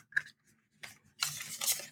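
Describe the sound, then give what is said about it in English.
Tarot cards slide and snap against one another, a few quick papery flicks followed by a longer rustling shuffle as the top three cards are drawn and laid out, fairly quiet with no talking. “I am taking the top three cards because why not?”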